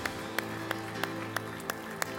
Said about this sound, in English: Let's clap our hands to Jesus. Let's clap our hands to Jesus today.